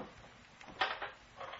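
The bottom drawer of a desk is pulled open: a short wooden scrape and thump, then a softer rustling slide, with no one speaking.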